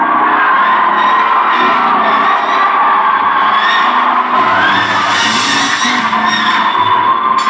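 An audience shouts and praises loudly together, a dense, sustained wall of overlapping voices, cheers and whoops that stays full and energetic throughout.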